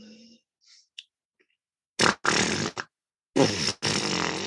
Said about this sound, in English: Right, that's a daddy fart.